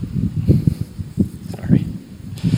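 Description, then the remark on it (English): Gusty wind of an approaching storm buffets in uneven low rumbling bursts, swelling and fading several times over a faint steady hiss, with a light rustle on top. “Storm is blowing in.”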